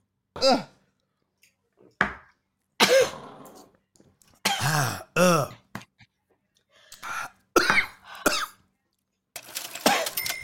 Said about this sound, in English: Well, that was a good job. That cured my cough. I'm afraid to cough now.